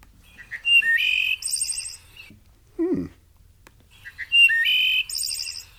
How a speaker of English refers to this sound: What is it called? The wood thrush. Wood thrush. Okay, here it is.